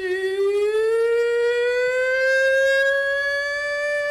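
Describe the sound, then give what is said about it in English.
A loud, sustained hog-calling holler by the third and final contestant in a pig/hog calling contest: one long, unbroken vocal wail that rises slowly and steadily in pitch for about four seconds, almost siren-like, with no talking. “Your final and 3rd contestant in the pig/hog calling contest.”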